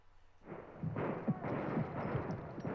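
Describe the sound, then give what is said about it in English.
An Indian attack on circling wagons: several loud gunshots crack out about every half second over a dense, rumbling clatter of galloping horses and rolling wagons, busy with no talking. “It's Indians attack gunfire horses and wagons.”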